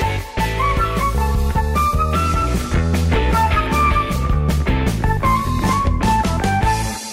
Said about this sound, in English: So here it comes. The music's fading in. Here is the music. I can hear it. The greatest theme song. We're going to say goodbye. Yeah, it's getting louder. It's getting louder.